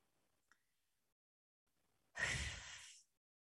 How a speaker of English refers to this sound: Just breathing.